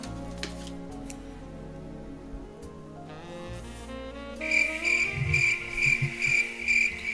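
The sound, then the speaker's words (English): Steady, rhythmic cricket chirping fades in after a few seconds of soft tonal music, turning loud with a high, pulsing trill and low thumps beneath, and no voices. “Yep, I was going to say, cue the crickets.”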